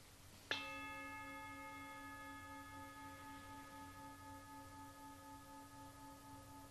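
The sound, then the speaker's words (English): A single meditation bell is struck once and rings out with a long, steady tone that slowly fades, lingering clearly through the quiet with no voices. “Just gently allowing the words to fade away as the bell rings.”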